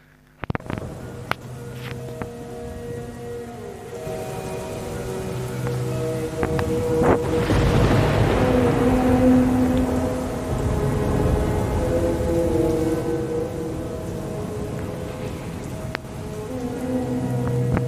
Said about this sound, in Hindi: और उस वक्त फिलिस घर से बाहर आती और अचानक से बारिश शुरू हो जाती है।